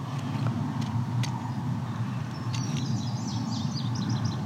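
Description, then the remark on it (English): An indigo bunting sings a quick series of high, paired chirping notes in the second half, along side road 10. A steady low rumble of traffic from Highway 6, not too far away, runs throughout. “We're hearing indigo bunting singing.”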